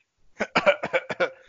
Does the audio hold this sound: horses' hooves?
no